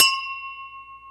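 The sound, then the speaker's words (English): Drinking glasses clink together in a toast, one bright strike that leaves a clear, high ringing tone slowly fading. Fairly quiet, with no talking. “And I, like, forgot it was, like, drink glasses for the clinky clinky.”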